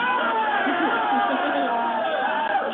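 An audience cheers and whoops in a steady, dense roar of many voices, holding loud and unbroken for a few seconds without any single speaker standing out.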